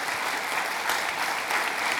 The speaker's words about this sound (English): Okay, you stop clapping, but you that are standing, if you really meant it, this is going to test whether you really meant it.